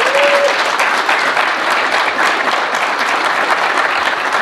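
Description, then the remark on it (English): Sustained audience applause for a guest at a live recording of the .NET Rocks show at Dev Connections, loud and dense, with many hands clapping at once in a steady wash of sound that holds for the whole stretch without speech. “Big round thank of applause.”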